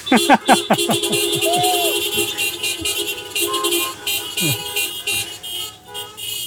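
Car horns honk repeatedly in a dense, overlapping chorus at the end of a performance, some short toots and some held blasts, loud amid a noisy outdoor crowd of vehicles.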